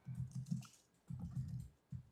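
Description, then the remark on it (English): Quick bursts of typing on a computer keyboard, two short runs of clattering keystrokes with a brief pause between, moderately loud, with no one talking. “typing back there.”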